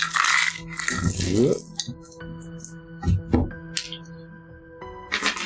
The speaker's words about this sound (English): I don't like that many dice just being rolled. That's it. Just many dice. A mysterious number of dice. Hey, it's about 15, 17, I'm sure. I know the sound of certainly, 14 certainly. D4s when I hear it.